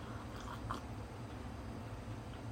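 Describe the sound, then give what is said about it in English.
Quiet mouth noises of someone taking a small sip of hot lemon tea, with a soft slurp early on over a low steady background hum. No one speaks. “I'm gonna have another sip of tea now.”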